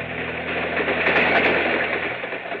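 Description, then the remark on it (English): A train rumbles steadily along the rails, a dense, continuous roar with low mechanical hum and clatter, fairly loud throughout, with no voices. “Now they're on a train following the ceremony on their honeymoon.”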